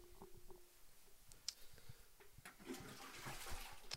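A toilet flushes, recorded live with the microphone right by the toilet bowl: a few clicks and a sharp clunk, then rushing, gurgling water swells and keeps churning to the end, fairly loud and with no voices.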